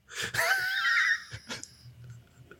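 A loud, shocked gasp sound effect: a sharp, drawn-out intake of breath with a squeaky, wheezing edge, followed by a couple of brief breathy catches before it fades. No one speaks.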